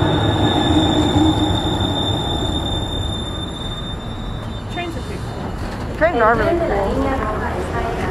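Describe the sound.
A Red Line subway train rumbles loudly into a station, a steady high-pitched squeal riding over the roar, while near the end an announcement says the train is arriving and to stand back from the platform edge.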